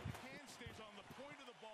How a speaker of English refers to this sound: Dude, someone just knocked on our fucking door. Are you serious?